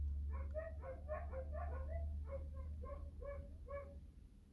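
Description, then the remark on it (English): The neighbors' three huskies bark repeatedly in rapid, yappy bursts, muffled, over a steady low hum. “These motherfucking dogs.”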